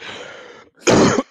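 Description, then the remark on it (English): A throaty cough: a softer, rasping exhale first, then a short pause and one loud, harsh bark of a cough. No speech accompanies it. “You keep coughing.”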